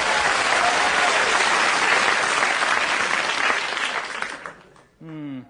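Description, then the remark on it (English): A studio audience bursts into sustained applause, dense and steady for about four seconds before fading out, followed by a brief stretch of a voice starting to speak. “I can guarantee that I can force a round of applause out of the mindless sheep in the studio audience here today.”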